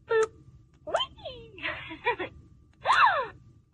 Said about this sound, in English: Like a gasping sound.